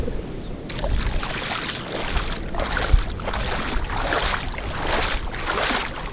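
Wet, sloshing steps wade through a river, a steady rhythm of splashes and squishes about once a second, with a constant hiss of moving water underneath.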